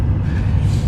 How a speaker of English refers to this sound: It's my drive to work, and right now I'm heading down the highway.